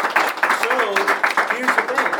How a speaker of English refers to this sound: All right, give a panel round of applause, sustain them.